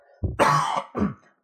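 A loud cough in three quick bursts from someone with a cold, rough and phlegmy with a throat-clearing quality, heard on its own with no talking.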